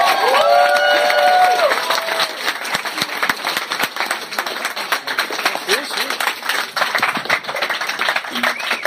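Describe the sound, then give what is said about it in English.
A comedy show audience breaks into sustained applause welcoming comedian Harland Williams, with cheering and a few rising whoops at the start, then dense, steady clapping carries on loudly throughout. “Hey, gang, thanks for that nice round of applause.”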